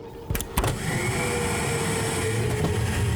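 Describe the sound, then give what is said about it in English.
A pneumatic tube system in a building is switched on to send a tube holding a piece of paper. Its suction starts with two quick clunks, then settles into a loud, steady rushing roar layered with a constant motor whine, with no voices. “It's one of those things you put a little tube and with suction it goes elsewhere in the building”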